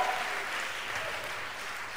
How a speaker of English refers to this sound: And as you are clapping, Let's give it up for the film stars. Clap for the film stars, as well as the dancing stars. And the final clap is for you in the house.